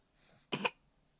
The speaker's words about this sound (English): Well, I guess you're coughing.